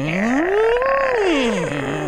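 A single long, loud wolf howl, played as a Halloween doorbell sound, rises in pitch, holds, then slides back down over about two seconds, with a rich, slightly eerie tone like a spooky sound effect and no talking.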